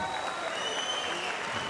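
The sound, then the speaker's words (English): Sustained applause from an audience at a shearing competition, greeting the finalists: a dense steady clatter of many hands clapping at once, fairly loud, with a faint voice over the PA mixed in. “Let's hear a big round of applause for Archie Parson”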